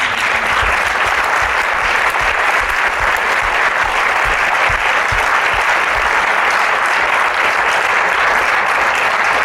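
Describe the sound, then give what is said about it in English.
Sustained, loud audience applause for Dr. Bruce fills the whole stretch, a dense steady wash of many hands clapping with no pauses and no voices breaking through. “Let's give a round of applause to Dr. Bruce.”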